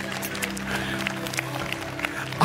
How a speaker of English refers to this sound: Okay, that's my wife. We clap for her.